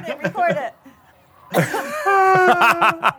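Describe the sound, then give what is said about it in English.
A voice imitates someone vomiting: a harsh, gagging retch bursts out after a brief pause, then drawn-out strained groans with choppy, laugh-like pulses. “And laughing and now puking in the corner.”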